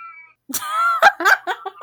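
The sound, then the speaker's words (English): A cat lets out a drawn-out, whiny meow followed by a few shorter, choppy yowls, fairly loud, after a brief faint tone at the start. “She's not a fan. I have to agree with the kitty.”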